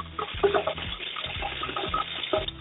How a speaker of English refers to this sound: Somebody's got the water running.